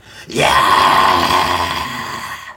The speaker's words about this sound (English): Give me a victory scream.